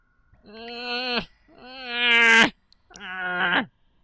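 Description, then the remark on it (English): A voice imitates a creature whimpering as it tugs with all its strength, sounding like a toddler denied candy: three drawn-out, whiny wails with a nasal, pleading tone. The second is longer and rises higher in pitch, and there is no talk alongside. “He's not very strong, but he's really tugging with all his strength, and he's starting to whimper a little bit.”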